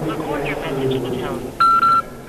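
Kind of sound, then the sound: signal or alarm, telephone touch-tone dialing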